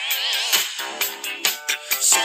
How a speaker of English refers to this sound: this is from …. Do you remember …? You ever heard of them? I don't know. I'm gonna play the song.